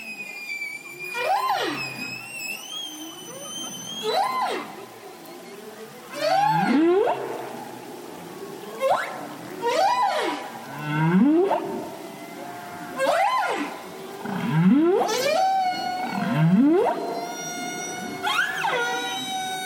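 Whale calls sound in a steady series, about eight long rising swoops with rich, ringing overtones, moderately loud and echoing, with no speech over them.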